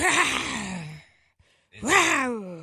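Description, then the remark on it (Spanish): A voice imitates a tiger's moan with two drawn-out, breathy groans. The first slides downward in pitch, and after a short silence the second swells up and then falls away. “O sea, tú buscaste gemido de un tigre mientras está en el chacachaca.”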